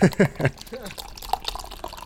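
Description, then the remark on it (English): Beer pours steadily into a glass, filling it up, a bubbly gurgle and fizz lasting a couple of seconds, with brief voices at the start. “Fill the glass up. The beer pour.”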